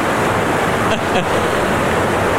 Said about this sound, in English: Oh, well, this is waterfall. What? Is this Niagara? I believe so.